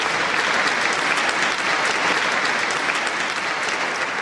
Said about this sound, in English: A hush falls over the hall, and out walks the conductor, his baton in hand. A round of applause peals out as he takes his bow.